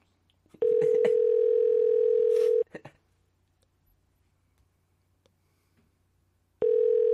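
A steady, buzzing telephone dial tone holds for about two seconds, then a few quick dialing beeps as a call is placed to the Ocean Way National recording studio. After a long quiet pause, another steady tone begins. No one speaks.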